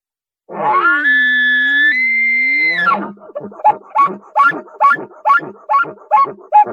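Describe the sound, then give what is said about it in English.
An elk locator bugle blown on a reed held in the mouth with a bugle tube, the sound adjusted by tongue pressure: a loud, high whistling tone held for a few seconds, then about nine rhythmic grunting chuckles, with no talking. “I stick the reed in my mouth, and I can adjust the sound by my tongue pressure. I'm going to do a locator bugle.”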